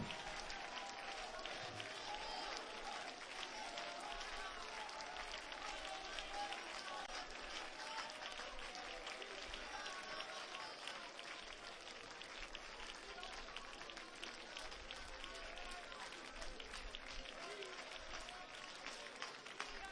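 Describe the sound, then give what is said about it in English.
A large church audience claps continuously and steadily throughout on a Sunday morning, a dense, sustained wash of applause, with voices faintly mixed into the crowd noise. “But on this Sunday morning, we're clapping our hands together.”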